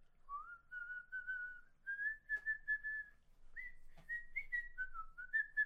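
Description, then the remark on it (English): Someone whistles the tune of The Farmer in the Dell, as the character Omar does in The Wire: a simple, bouncy melody, the clear tone stepping between notes in short phrases with a brief pause midway, no talking. “He whistles like a song. It's one that he goes... That one.”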